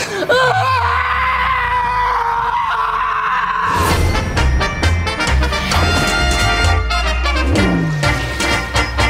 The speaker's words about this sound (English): I've broken every single bone in my hand. I'm going to scream now because I can't hold it in, so here we go.